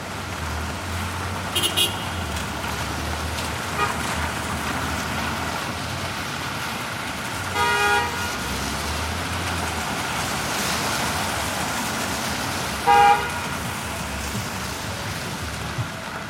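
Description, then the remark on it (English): Cars pass along a wet street, their low rumbles swelling and fading one after another beneath a steady hiss of rain, with a few brief tonal squeaks rising above. “The sounds of cars along the street.”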